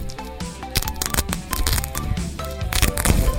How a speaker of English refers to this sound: Does Velcro count as ASMR? Hold on. I got some Velcro here. Does this count as ASMR? Hold on. I'm now peeling apart the Velcro.